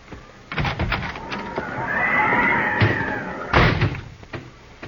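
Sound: horse whinnying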